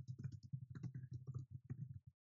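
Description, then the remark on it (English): Quiet, rapid clicking of keys on a computer keyboard, a steady run of keystrokes lasting about two seconds, with no one speaking. “And I mean, keyboard. Yeah, sorry to get that in the shot, but that'll be fun editing later.”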